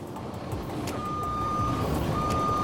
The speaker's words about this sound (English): That's the truck, ladies and gentlemen. That's the truck coming to your door.